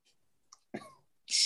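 A quick yawn: a small click, then a short voiced groan that slides down in pitch, ending in a loud, breathy rush of air. No one speaks.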